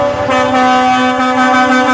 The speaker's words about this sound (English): The trucks rolled through Vancouver, horns blaring, finishing their drive from Merritt. Hundreds of logging truck owners and contractors furious about what is happening to their livelihoods.